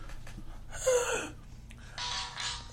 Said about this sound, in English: Hey! Wait, did that actually just go off? There's the alarm.